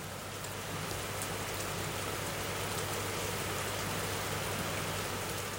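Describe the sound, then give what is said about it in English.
Heavy summer monsoon rain pours down steadily in Thrissur, a dense, constant roar of drops drumming on surfaces, with no pauses and no voices. “The summer monsoon rains here are indescribable, and the sound of them thundering down is a song in and of itself.”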